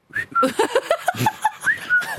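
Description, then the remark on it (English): Someone whistles: a quick run of short, sliding notes over about two seconds, loud and bright, with breathy noise between the tones. “Whistling. Whistling. She whistles.”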